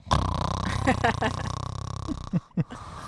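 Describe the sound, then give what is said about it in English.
A voice imitates a man's loud snoring in a movie theater: one long, low, rattling buzz lasting about two seconds, followed by two short, throaty snorts. “There's no way this guy's snoring.”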